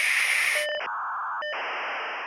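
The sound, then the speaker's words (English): A dial-up modem dials up and connects to get online: a hiss of static broken by steady pitched tones and sudden shifts into buzzing, screeching noise bands, fairly loud and continuous, with no voices. “This was a time when you had to unplug your telephone to get online, and you know it would dial up the modem, and it would go, eek!”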